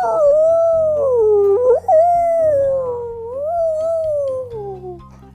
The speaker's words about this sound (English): When he hit the siren button, there was a siren. And the siren was her dog.